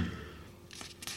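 Two short, papery rasps sound quietly in quick succession, like a sheet being torn out of a notebook, with a brief pause between the tears and no talking.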